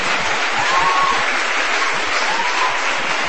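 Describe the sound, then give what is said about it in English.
An audience claps steadily after a reading, a dense, even wash of many hands at a fairly loud, constant level with no voices standing out. “Not to suck up to you guys, but that's the nicest applause I've ever received.”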